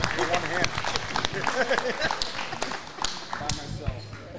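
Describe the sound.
An audience at Ragtop claps in a steady scattering of sharp, overlapping hand claps, with crowd voices murmuring and chattering underneath throughout.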